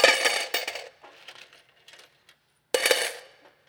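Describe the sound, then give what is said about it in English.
A handful of gold coins drops and clinks together in a bright metallic jingle, then settles into scattered smaller rattles. A second burst of jingling coins follows near the end. “So if you gave, say, $700, it could, in gold coins, it could sound like this.”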